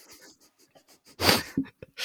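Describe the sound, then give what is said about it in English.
Soft, scattered breathy noises lead into one sudden, loud sneeze, a sharp burst of spray and air, followed by a couple of brief snuffling sounds. “Bless you.”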